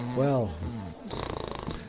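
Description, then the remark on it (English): A person imitates snoring with a voiced, drawn-out snort followed by a rapid, rattling exhale, fairly loud, with a short voiced sound between the two parts. “Okay, well, you could snore in the background and I could say stuff, couldn't I?”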